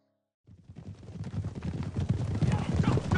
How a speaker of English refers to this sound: Suddenly, the sound of hooves hitting the ground broke out.